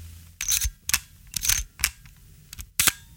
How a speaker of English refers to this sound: What camera is this shutter sound from? Well, actually, it's not just a shutter sound. It's also the sound of it winding on.